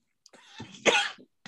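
sneeze

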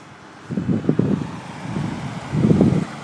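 car driving past outdoors

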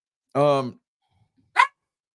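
dog barking and whimpering

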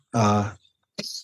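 sneeze

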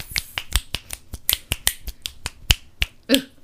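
finger snapping

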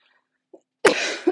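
coughing

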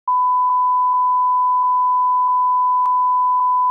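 censor bleep tone

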